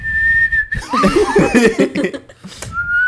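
A person whistles a long, steady note, breaks into close, breathy laughter in the middle, then resumes whistling a slightly lower held note near the end.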